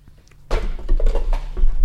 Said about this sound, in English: How did you manage to knock everything over?